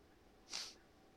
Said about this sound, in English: Sniffles at the end.